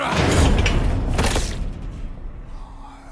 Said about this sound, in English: I sprinted across the corridor and rammed the door with my shoulder.